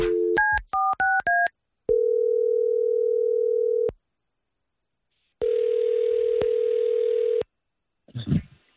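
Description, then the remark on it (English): A quick burst of about six telephone keypad beeps dials a prank call, then a steady outgoing ring tone repeats twice with a pause between, ending in a brief clatter as the line picks up. “So we're calling to mess with him, frustrate him a little bit.”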